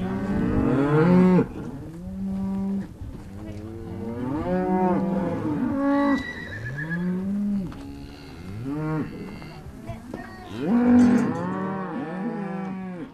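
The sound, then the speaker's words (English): A herd of cows in a pasture just north of LaGrange, California moos almost continuously, several deep, drawn-out calls overlapping one another, loud and steady with no voices. “Within the span of about 10 minutes, there were four or five trucks towing horse trailers, parked with all their occupants on horseback, and already headed to the pasture to retrieve cows.”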